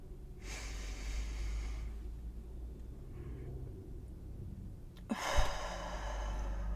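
A deep breath is drawn in, followed after a pause of a few seconds by a long, airy exhale, with a low rumble underneath and no talking.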